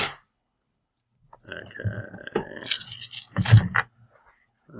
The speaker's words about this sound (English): So I just roll my 13? Yep. Oh, so many dice.